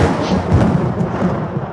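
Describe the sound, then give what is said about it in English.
A loud thunderclap sound effect: a dense, rolling boom with heavy low rumble and crackling texture that stays strong for nearly two seconds without fading, and no voices. “That was a thunderclap sound effect.”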